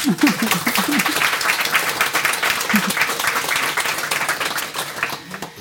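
An audience breaks into steady, dense applause to welcome two guests, many hands clapping at once in a loud, even wash that holds for several seconds before thinning slightly at the end.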